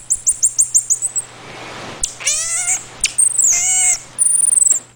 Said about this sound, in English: That was indeed a marmoset singing to its owner. They do sound like birds.